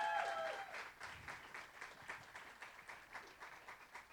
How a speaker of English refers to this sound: Give the band a big round of applause. Amen. Praise God. Amen. Wonderful. God is good. Amen. Thank you for that, man. I can't tell you what this group up here means to this church, man. They deserve a big round of applause this morning.